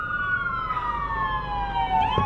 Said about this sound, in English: Oh, here's an ambulance.